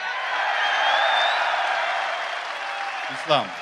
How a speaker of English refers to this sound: and hopefully people realize you can do that and get to the top, be pound for pound number one, and get a crowd like this cheering for you as well.